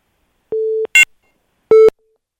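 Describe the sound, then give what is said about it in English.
A phone line's busy tone after a radio call-in caller's line disconnected: two steady, mid-pitched electronic beeps with a sharp click between them, no voices. “Something about you screaming there disconnected the line.”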